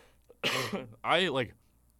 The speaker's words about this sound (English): Oh, God, I'm going to cough.